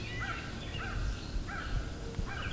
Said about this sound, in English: Crows. Interesting. The crow being chased by eastern kingbird. The crow must have landed near a nest.